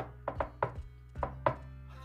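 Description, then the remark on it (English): Knocking on a door: a few sharp, hollow raps, three and then two, in an uneven rhythm with a short pause between groups. No one speaks. “Sure, I'll give a knock.”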